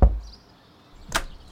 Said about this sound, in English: I'm just going to hope that this is the house I need to be at. Just knock on the door here.